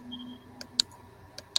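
A few sharp, quiet clicks on a computer as someone scrolls up to see a schedule on Facebook Messenger, four taps spaced irregularly over a faint low background hum, with no one speaking.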